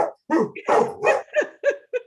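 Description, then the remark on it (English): A pet dog named Josie, prompted to sing, lets out a run of about six or seven loud vocal barks and yowls in quick succession, rising and falling in pitch like a howling, sing-song bark sequence. “Well, do you want me to have her sing for you?”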